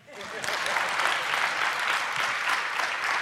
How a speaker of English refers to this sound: Now you clap.